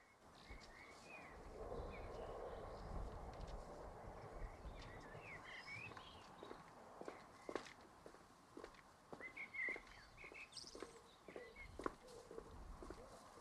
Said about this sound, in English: I'm just going to stop and look at the sunset. And listen to the bird.